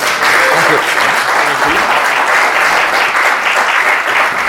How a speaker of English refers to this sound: Welcome to the panel. This is the panel with Roy Thomas. A round of applause for Roy.